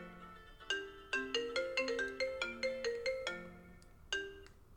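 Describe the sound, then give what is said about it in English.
A phone rings with an incoming call, a melodic electronic ringtone: a quick run of about a dozen bright chiming notes, then a short pause before one more note. It is clear, with no talking. “You get calls during freaking stuff, and it messes up the whole game here.”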